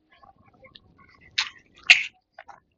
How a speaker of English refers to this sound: As I just take a gulp of water, you know, I am a 56-year-old guy who knows the damage of dehydration as well.